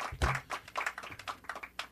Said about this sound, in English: More applause. Very nice. Very good.